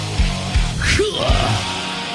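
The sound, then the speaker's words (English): A concert crowd roars and cheers in a steady, dense wash of noise, with a single rising whoop cutting through and a few low thumps underneath. “The greatest live shows and that cheering crowd sound.”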